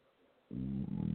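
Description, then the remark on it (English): A loud, low, croaking burp after drinking coffee starts abruptly after a moment of near silence and rumbles on for about 0.7 seconds with a brief catch midway. No one speaks. “Coffee burp.”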